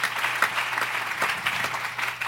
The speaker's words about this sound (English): Go ahead and clap your hands to the Lord. Will you do that? Just clap your hands to the Lord.